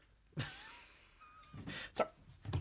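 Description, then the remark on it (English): A voice imitates a bookshelf shaking from three cats climbing inside it, with a few rough, uneven bursts of rattling and thumping, separated by a faint, wavering tone in between. “All three cats have congregated inside the bookshelf, and I just hear, and it's the whole bookshelf shaking.”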